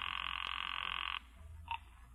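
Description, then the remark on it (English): A telephone rings unanswered on an outgoing call with one sustained, buzzy tone lasting about a second, then cuts off, followed by a brief faint chirp and quiet hiss. No one speaks. “Let it ring.”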